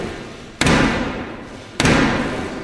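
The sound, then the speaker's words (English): At the opening of Parliament, the official called Black Rod bangs a black rod twice on a wooden door: two heavy, resonant knocks about a second apart, each leaving a booming echo. No one speaks. “I mean, after this is the year that I discovered that they opened Parliament with a guy banging on the wooden door with a black rod called Black Rod.”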